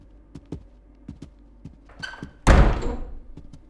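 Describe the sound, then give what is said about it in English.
A door is opened to let visitors in and then shut: a few soft clicks and knocks from the latch, a brief squeaky creak, then a solid, loud thud as it closes, with a short reverberant tail. “Open the door.”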